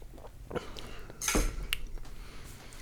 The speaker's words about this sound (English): Although I might not be tasting it accurately because I'm pouring the shot glass that had the agave in it. Let me drink it out of the bottle like a man.